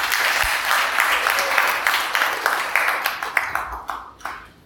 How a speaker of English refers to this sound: Thank you very much. Let's clap to the Lord for our brother.